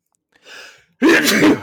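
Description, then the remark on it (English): A single loud sneeze: a soft breathy intake builds for a moment, then a sharp explosive burst follows, with no talking around it. “Hang on, I got a sneeze.”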